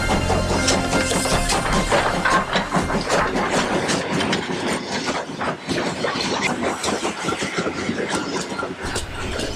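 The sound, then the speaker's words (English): A train pulls into a station with loud, steady rumbling and clattering of wheels on rails, rhythmic clicks and metallic rattles, with no voices. “The Encouragement Express train has pulled in.”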